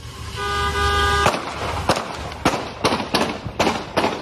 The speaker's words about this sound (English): Okay. 11, 12, 13. Goddamn. That was like 17 shots. That was a lot. All right, I counted 18. So I did this yesterday. Beretta? Beretta hold 18, right?